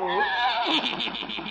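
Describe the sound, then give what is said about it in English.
A horse named Silver Moon, with a buggy, whinnies loudly, a quavering high neigh that slides down and breaks into a rapid, pulsing flutter before fading out. “There's Doc. And his horse and buggy.”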